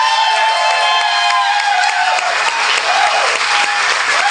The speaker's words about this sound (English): I mean, I know you're applauding that because it's a thing that ended that lasted 5 minutes, but it wasn't a good thing.